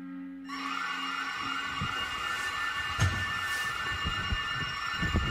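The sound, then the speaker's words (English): A steady, high-pitched electronic alarm sounds continuously in a house in the middle of the night, after a phone was apparently found in the house; a droning layered tone that never pauses, with faint thumps and rustling underneath and no voices. “Okay, so we've just been woken in the middle of the night by the sounds of an alarm.”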